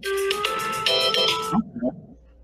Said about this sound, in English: And we are out of time, as you can see from the alarm.